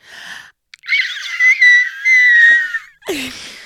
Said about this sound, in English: And as my anguish became more powerful, a short, loud shriek managed to escape my lips.